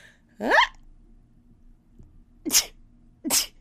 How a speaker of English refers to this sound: You sneeze like a bunny. I do.